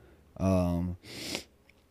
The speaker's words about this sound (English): I know you can hear I got the sniffle thing still. Man, I can't figure out what it is with my allergies.